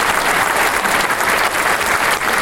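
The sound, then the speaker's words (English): Steady, loud applause from a crowd, dense overlapping claps filling the whole moment without pause and with no voices standing out. “Way to go, Robert Downey Jr. We applaud you, sir.”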